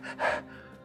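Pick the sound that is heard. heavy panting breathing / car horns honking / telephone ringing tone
heavy panting breathing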